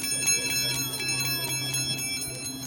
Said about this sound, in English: Magic bell.